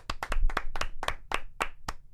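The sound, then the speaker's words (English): An audience gives a brief round of applause made of sharp, distinct hand claps in a quick, steady rhythm, roughly four per second, at moderate loudness with no voices. “And so let's give the US of A good old round of applause for a brownie.”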